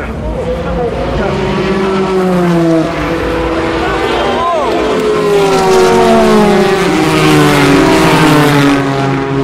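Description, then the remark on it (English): Loud race car engines roar past one after another at Tête Rouge during the race, their high whining pitch sweeping up and down as the cars go by, with one sharp pass cutting through midway. “I thought you might want to hear some sounds of cars and perhaps a little French commentary.”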